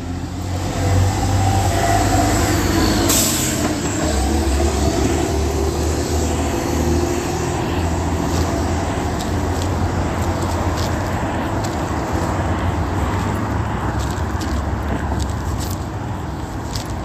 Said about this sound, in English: Traffic.